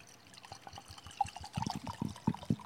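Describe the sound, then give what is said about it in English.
Wine glugs and splashes into a glass in a short, uneven pour, fairly quiet, with bubbly gurgles that grow fuller toward the end. “So let me pour one for them.”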